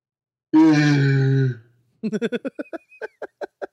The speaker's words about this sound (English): Me making that noise and yawning. I hope that all came out.